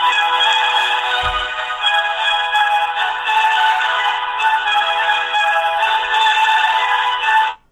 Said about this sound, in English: So let's give him a call and see what happens. Enjoy this Verizon ringback tone while your party is reached. Beautiful ringer. Beautiful ringtone that I'm receiving.